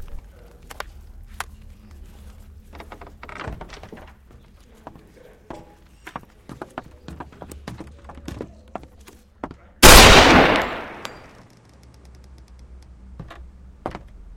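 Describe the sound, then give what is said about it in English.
After several seconds of steady clip-clopping hooves, a single loud gunshot cracks out and rings off in a brief echoing tail. The gun goes off accidentally at the start of a bank robbery. There is no talking. “Gunshot's a nice way to start a bank robbery. I'm sorry, it just went off.”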